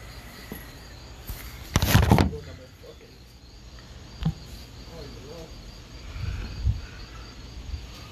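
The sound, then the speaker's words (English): A steady, high-pitched chorus of crickets chirps quietly throughout, outdoors among trees in New York, with a brief loud rustling burst early on, a sharp click midway and faint low murmuring in the background. “No, I feel like I'm in like you hear the crickets, you see the good trees in the back.”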